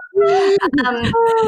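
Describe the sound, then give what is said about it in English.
A voice imitates someone breathing heavily on the other end of a phone line, with loud, voiced gasping and panting sounds that rise and fall in pitch over a couple of breaths. “Oh my God, how freaky would that be if you answered the phone and someone just breathing heavily on the other end?”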